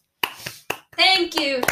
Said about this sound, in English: The one single. The slow clap. You just get one clap. That's all you get.